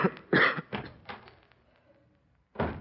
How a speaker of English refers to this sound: I'm going to get you something for that cough. No, I'm all right. It's just a little sore throat, that's all. Don't you argue with me,